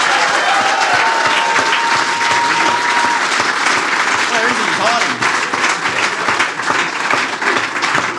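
Sustained applause from a large audience at an event at the Royal Derby venue, a dense, steady crackle of many hands clapping at full volume for about eight seconds, with a faint whistle cutting through early on.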